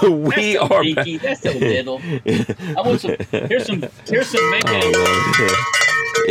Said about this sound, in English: Let's see your big old cowbell